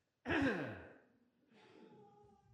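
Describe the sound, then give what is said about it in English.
A single heavy cough, made away from the microphone, bursts out abruptly and trails off, followed about a second later by a softer, breathy exhale, with no talking. “I'm going to have a big cough and I'm going to move my microphone for all of you at home.”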